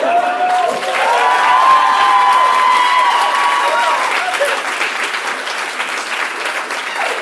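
A crowd breaks into loud, sustained applause with scattered cheers and whoops, the clapping holding steady for several seconds before gradually thinning out toward the end.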